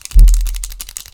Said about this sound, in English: We all got clicky pens.